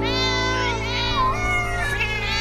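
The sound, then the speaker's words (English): A drawn-out, wavering meow, a human voice shouting "Meow" in imitation of a cat, rises and bends over a steady, sustained musical backing at moderate loudness. “somebody shouted, "Meow."”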